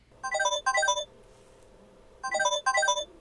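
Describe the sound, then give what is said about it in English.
A mobile phone ringtone for an incoming call from Jack plays two bursts of a rapid, bright, descending electronic melody, pauses about a second, then repeats the same double pattern. No one speaks over it. “Speaking of the devil, this is Jack calling me up right now. Oh, okay. Yeah, on my phone here.”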